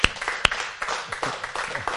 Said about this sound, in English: Hallelujah! Man, clap.